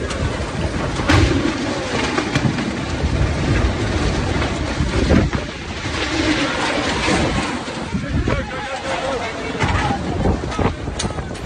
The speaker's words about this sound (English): So that's just the wind alone. Yeah, just... and people were running for their lives, running away from this storm as it was ripping through the region.